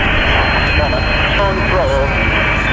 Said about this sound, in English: The plane bearing Vice President and Mrs. Johnson is now taxiing. You can certainly hear it in the background.